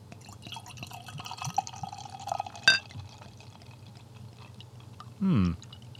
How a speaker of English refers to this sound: All right. Okay. I'm going to pour now.